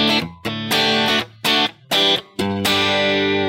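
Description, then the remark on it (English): A clean electric guitar, with its distortion switched off, plays a handful of strummed chords in short bursts separated by brief pauses, fairly loud, with no one talking. “What I like to do is, right now, if I turn this off, my guitar tone's fairly clean.”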